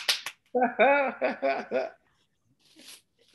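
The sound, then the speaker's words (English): Two quick, sharp hand claps ring out at the start, followed by a drawn-out vocal sound with several rising and falling syllables, then a faint rustle. “Hold on, let me clap.”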